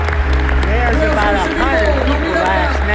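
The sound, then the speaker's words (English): A large crowd at Lakewood cheers and applauds loudly and continuously, with shouts and whoops rising over steady clapping throughout. “Come on, Lakewood, let's cheer again.”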